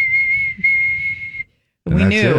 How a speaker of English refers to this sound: She had that army green whistle when it was time to come and eat dinner, and she'd go out on the porch.